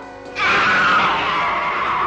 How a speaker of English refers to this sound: What on earth was that? I heard somebody scream just now.